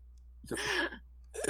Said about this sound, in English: Let me clear my throat for this. Because here we go.